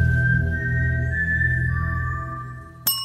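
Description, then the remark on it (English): A person whistles a short four-note tune in G minor: G4, B-flat 4 and A4 eighth notes followed by a D4 half note, the steady pitches stepping up and then down, over a low background rumble, ending with a brief sharp knock. “Lionsgate Entertainment owns this tune described as, quote, a human whistling a G4 eighth note followed by a B-flat 4 eighth note followed by an A4 eighth note followed by a D4 half note in the key of G minor.”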